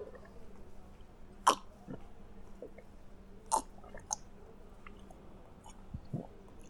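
Someone gulps down a drink with a few distinct, wet swallowing clunks spaced a second or two apart. The swallows are close and fairly quiet, over a low steady background hum.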